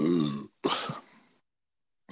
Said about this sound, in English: Funny because at the very end it makes a fart noise. You'll love it.